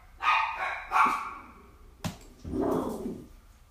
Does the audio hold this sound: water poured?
no